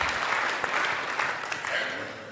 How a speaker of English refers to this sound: Big round of applause.